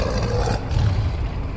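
big cat roaring

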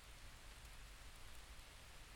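gentle rain falling

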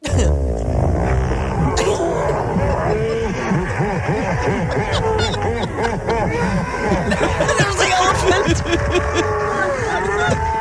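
crowd reacting

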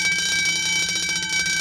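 alarm bells ringing

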